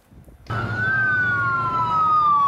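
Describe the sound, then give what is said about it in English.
An ambulance siren blares in abruptly after a brief quiet moment, a loud, sustained wail whose pitch drifts slowly downward over a low vehicle rumble. The ambulance is carrying rescued kidnapping survivors to the border in Mexico, escorted by soldiers with Humvees and machine guns. “Soldiers with Humvees and machine guns brought the survivors to the border in an ambulance, as you see that here.”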